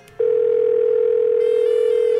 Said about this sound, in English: We have a Nova Scotia phone book here, so I'll just pick a number randomly. Here we go. Let's see. Area code 902. This should be interesting. Okay, it's ringing. Here we go.